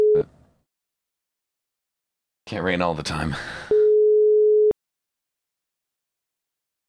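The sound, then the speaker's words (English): A brief telephone tone clips off at the start, then a voice speaks a short line, followed by a steady, loud one-second hang-up beep that cuts off sharply into silence. “That's the they hung up beep.”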